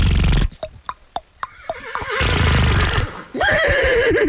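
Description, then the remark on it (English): A person imitates a horse, first with a quick series of sharp, clicking snorts, then a loud, wavering, drawn-out vocal whinny. “Make a horse noise.”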